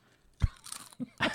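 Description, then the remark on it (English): A few crisp crunches of someone biting into barbecue-flavored potato chips, each bite a sharp burst of noisy crackle, heard alone without talking. “Okay, final crunch for this part.”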